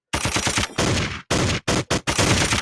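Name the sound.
gunshot sound effects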